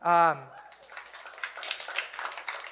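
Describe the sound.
A short voiced exclamation opens, then a round of scattered applause patters steadily at moderate loudness, many hands clapping in a dense, uneven rhythm until the end.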